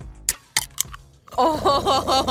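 A few short, wet slurping sips of a morning drink, three quick bursts, are followed by a sustained voiced sound from a person, like a satisfied sigh or drawn-out vocalization.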